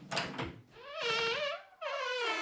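door being opened

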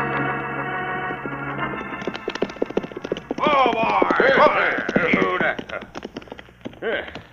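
horse hooves galloping

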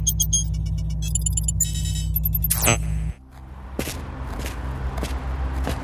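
bus interior engine rumble

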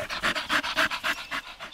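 dog panting

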